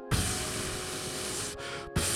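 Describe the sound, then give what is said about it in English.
A steady hiss like an aerosol spray can being sprayed, running for about two seconds with two brief breaks near the end; no voices. “It sounds like I'm spraying spray paint on a wall.”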